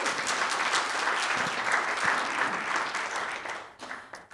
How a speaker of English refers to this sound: And would y'all just give them a hand clap? Give them a welcome.